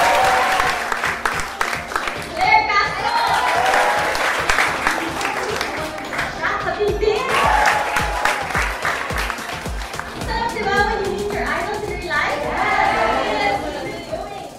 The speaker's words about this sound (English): The girls you can hear cheering are the top teams from the Girls Got Game Born Ready Basketball Camp, who have been training even during the pandemic through virtual classes and, recently, had finally gotten back onto the court.